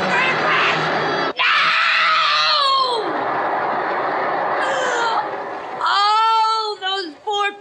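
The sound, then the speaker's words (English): Loud, sustained screaming from several people during a crash, layered into a chaotic wall of wails that rise and fall in pitch, with a brief break early on and a piercing shriek near the end. “Those poor people! All those people! And the screams! All those screams!”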